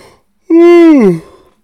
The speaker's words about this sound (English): Wow, yawning on the podcast, I apologize.